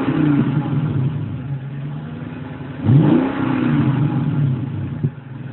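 A car engine idles with a steady low rumble, then gives one light rev near the middle, pitch rising and falling back before settling into idle again, with a brief blip toward the end, as a guest drives away from a studio up the street in Carlisle on a rainy Saturday morning.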